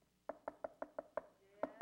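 A rapid series of firm knocks on wood, about six evenly spaced raps, a brief pause, then two more, fairly loud with a hollow resonance.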